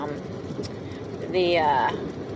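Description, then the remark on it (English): Windshield wipers swipe once across the glass with a short rubbery squeak, set against a steady hum of car interior noise; a muffled voice may be faintly present. “But anyways, all right, windshield wipers. I still don't know this car.”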